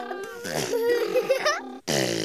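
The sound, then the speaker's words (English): A voice makes a buzzy, sputtering imitation of a car muffler, a wavering low drone with lip-flapping texture, then a brief pause before another rumbling burst. “What sound does a car muffler make?”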